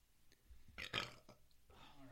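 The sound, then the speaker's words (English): A single loud burp from someone drinking beer rumbles out for about half a second, followed by a voice beginning to speak. “The burping's going to happen.”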